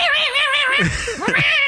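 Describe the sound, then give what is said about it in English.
A person's voice imitates a cat's screech: a loud, high, wavering wail held for over a second, with no other talk. “The cat was like.”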